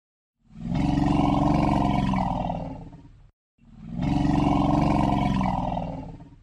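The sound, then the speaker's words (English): Two long, deep rumbles from an elephant, each lasting nearly three seconds, loud with a throaty, vibrating low tone, separated by a brief pause and no talking. “And here's the elephant rumble.”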